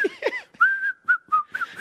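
A person whistles a short, cheerful tune up close, a string of clear notes with brief gaps between them, just after a quick vocal sound at the start.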